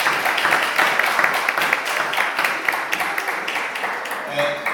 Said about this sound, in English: A wee thanks to the team for providing those amazing bites at half time. So we give them a wee thanks. Round of applause.